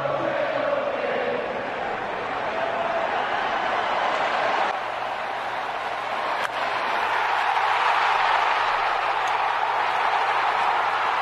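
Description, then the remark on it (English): A huge baseball stadium crowd of fans roars and sings together during a batter's walk-up, a dense, continuous wall of sound, loud and sustained throughout, swelling slightly in the second half with no individual voices standing out. “So just peep the energy in the crowd, man.”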